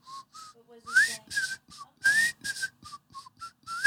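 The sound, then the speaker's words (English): Someone whistles a bright, bouncy tune, short clipped notes hopping up and down in a steady, cheerful rhythm, with no talking over it. “Some of you can whistle”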